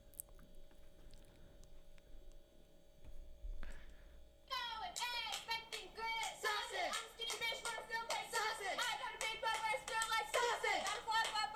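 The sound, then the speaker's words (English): After a few seconds of low hum, a cheerleading squad in a video bursts into a loud, rhythmic cheer about sausage, many voices chanting together over steady clapping until the end. “And the cheerleading squad like makes a fucking whole cheer about it.”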